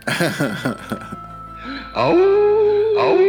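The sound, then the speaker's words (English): A person gives a loud, sustained wolf-like howl, a long drawn-out vocal tone held steady for over a second, preceded by a few short voiced yelps and sounds. “Sorry, I had to howl.”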